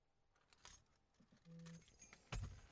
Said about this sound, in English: Those are your keys.